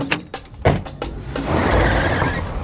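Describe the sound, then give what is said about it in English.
Several quick, solid thumps of car doors slamming shut in close succession as people get into the car, followed by a steady low rumble like an engine running, with no voices. “Quick, Trusty, get in the car.”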